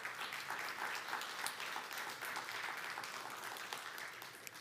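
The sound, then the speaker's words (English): A church audience applauds two men joining the elder team, many hands clapping in a dense, even patter that stays fairly loud throughout with no voices standing out. “Y'all give a round of applause for these two men.”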